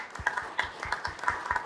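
Audience applause: many hands clapping at once in a dense, steady patter of sharp claps, moderately loud and sustained throughout, with no voices.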